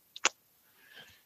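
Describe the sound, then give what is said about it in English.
Two pens, a blue one and a black one, being handled: two quick, sharp plastic clicks in succession, followed by a softer, brief rustle of handling, with no one speaking. “So I've got two pens in my hand. I've got a blue one and a black one.”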